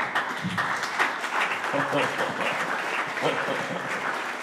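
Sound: audience clapping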